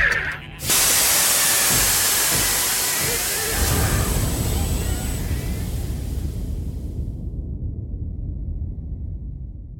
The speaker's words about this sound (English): We're ready to blow the airlock. Okay! One sheep tiger heading for oblivion!